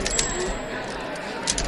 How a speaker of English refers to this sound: Give me a typewriter.